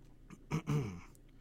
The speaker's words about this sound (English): So, sorry, I had to take a quick sip of beer.